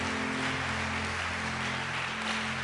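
A church audience claps during a morning service, a steady, dense, hissing wash of many hands that holds at an even level throughout, over a low, constant hum.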